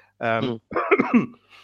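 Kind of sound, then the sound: human body sound, cough or throat clearing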